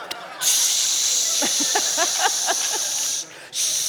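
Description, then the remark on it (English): An aerosol spray can hisses in a long, steady, bright burst of about three seconds, stops briefly, then sprays again; a faint voice murmurs underneath partway through. “Wouldn't it be great, guys, if emotional connection came in an aerosol, right?”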